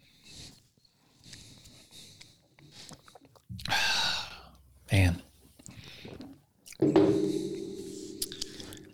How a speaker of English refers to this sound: This is good. Uh-oh. Let me take another sip.